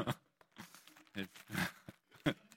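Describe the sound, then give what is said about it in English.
Pages of paper Bibles rustle and crinkle in several short, uneven bursts as people hold up their Bibles, with faint murmuring voices in the background. “Who's got paper Bibles?”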